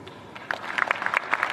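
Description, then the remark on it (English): A short stretch of polite applause: light, scattered clapping from a small group, crisp and moderately loud, with no voices over it. “That little bit some of some very polite applause there.”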